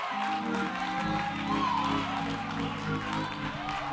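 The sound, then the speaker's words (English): Sparse clapping from six people, thin and scattered rather than a full ovation, heard beneath a voice and steady sustained tones. “Thank y'all for the six people that's clapping on that.”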